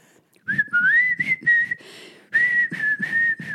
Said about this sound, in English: Why can't I whistle today? It's because you're laughing at the same time. You must passively aggressive whistle.